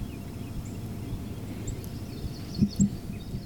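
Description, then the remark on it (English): Faint, scattered songbird chirps from migratory wrens and sparrows sound over a steady low outdoor rumble on a warm spring morning, with two soft thumps near the end. “Birds are singing. Oh, there is a beautiful northern cardinal sitting on my picnic table. You can hear some migratory birds, some wrens, some sparrows.”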